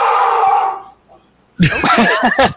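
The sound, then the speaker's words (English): A dog howls and yelps loudly, with a strained burst, a brief pause, then a longer run of wavering, rising-and-falling cries. No one speaks over it. “I think the dog wants to know the answer.”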